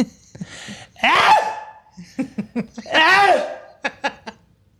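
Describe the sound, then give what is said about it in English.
A person imitates their own loud sneeze twice, each a sharp, forceful burst with a raspy vocal edge, separated by short clicks and breathy sounds. “I wish people could hear your sneeze.”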